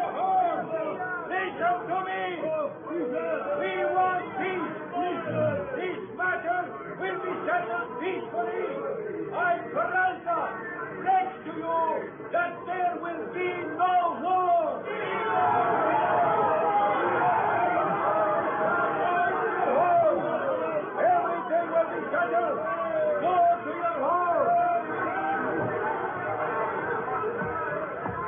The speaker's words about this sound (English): There's a large flag draped over the balcony rail, and behind it stands Colonel Peralta trying to quiet the angry, shouting mob below.